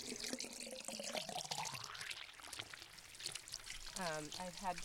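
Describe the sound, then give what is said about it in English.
Water pours steadily into a large 3-gallon jug, a continuous rushing whose pitch climbs as the container fills, with a person's voice briefly audible near the end. “Usually that's how long it takes us to go through 11 3-gallon jugs. All right, this one's almost full.”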